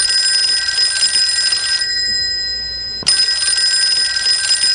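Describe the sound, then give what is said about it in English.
A telephone rings loudly with a shrill, buzzing bell tone, stopping briefly in the middle before the ringing starts again. There is no talking. “Let's take a break and call them the Mental Institute. Okay. No. Wrong phone.”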